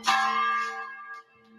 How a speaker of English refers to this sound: They've got this chapel on campus, and they've got this big old bell.